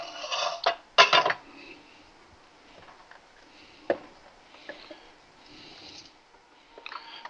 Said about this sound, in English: We've got our chicken torn up here. So all we're going to do with this now is take it out of our perfect bowl, and we're just going to pour it right into our pot of chili.